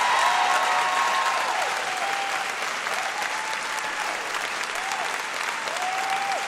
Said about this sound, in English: You deserve all that applause. That's right.